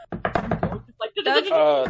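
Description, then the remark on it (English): A rapid series of about six sharp knocks, loud, like fists banging on a door, as two people bang on doors to wake someone, followed by a sustained vocal sound. “They both start banging on the doors.”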